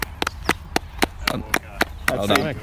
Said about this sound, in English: And excuse me, I'm just going to clap the tail walker through.